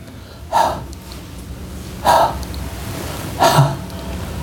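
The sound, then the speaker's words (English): Three sharp, forceful breaths pushed out one after another at an even, unhurried pace, each a short airy burst, breathing out only with no breathing in, over a quiet background with no talking. “And Grand Sheikh continues saying that Allah subhanahu wa ta'ala, these 7 breaths where everyone is seeing you making no in, you are not breathing in, you're only breathing out.”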